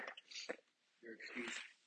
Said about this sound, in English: I need to sneeze, excuse me, hold on.